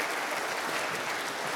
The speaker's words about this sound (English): That actually is worthy of clapping because as church camp would prove, putting 17s on a space with 7 pool noodles could have gone a whole lot worse than that.